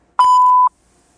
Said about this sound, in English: The person whom you're trying to reach is currently unavailable. Hmm. Please leave a message after the beep.